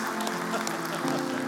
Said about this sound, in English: Yes, glory to our King. You can clap for Jesus, that's totally fine. Yes.